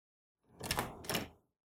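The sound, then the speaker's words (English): Two heavy, booming thuds pound against a door in quick succession, forceful, with a dull resonant body to each blow and silence before and after. “So quit with the pounding already. Are you trying to break the thing?”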